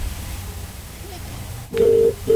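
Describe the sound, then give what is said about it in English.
A sharp click, then a home phone line's ringing tone during an unanswered prank call: a steady, fairly loud buzzy purr in two bursts separated by a short gap, over a low background rumble. “Does no one answer a home phone?”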